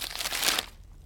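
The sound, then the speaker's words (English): A brief crinkle and rustle of a piece of paper being picked up and handed over, bright and papery for about half a second before fading into quiet. “Grayson picks up a piece of paper and hands it to Radon.”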